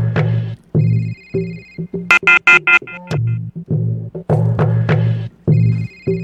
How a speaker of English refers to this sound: But at least the phone lines are already started ringing, so.